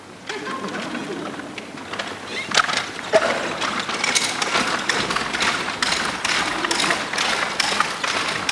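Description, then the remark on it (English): A horse trotting on request, its hoof footfalls landing in a steady, quick rhythm of sharp taps and thuds over a constant rustling hiss, growing slightly louder after the first few seconds. “Could you give us a trot?”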